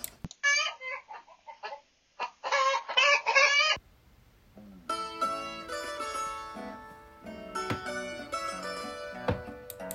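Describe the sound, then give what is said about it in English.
Chickens cluck in a quick run of loud bursts for a few seconds, then fall silent as steady music takes over. “So back in 2011, the wonderful Jason Riley mentioned to me that he wanted to get some chickens.”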